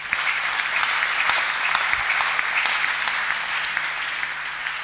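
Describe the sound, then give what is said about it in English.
A church audience applauds itself during a sermon for about five seconds, a dense, even wash of many hands clapping at a sustained loud level with no voices standing out. “Wow, clap for yourself.”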